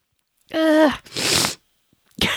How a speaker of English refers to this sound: God, I'm going to sneeze. I'm sorry.